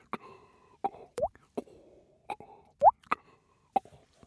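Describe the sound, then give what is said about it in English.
Water drops dripping from a cave ceiling: about nine irregular plops and plinks, some with a quick rising pitch, each followed by a faint resonant tail, with no voices. “And drops of water fell from the ceiling.”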